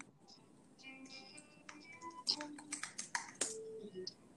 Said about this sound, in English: Oh wait, who's typing?